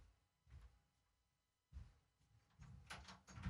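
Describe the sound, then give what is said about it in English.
A locked door is rattled and handled, then a metallic click as the lock turns and the door swings open with a few soft thuds and scrapes, with no talking. “Hey, I wouldn't recommend locking the door, but okay, sorry.”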